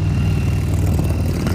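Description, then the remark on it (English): A passing motorcycle's engine rumbles loudly and steadily, a deep throbbing drone that holds for a second and a half without voices over it. “Excuse the motorcycle going by.”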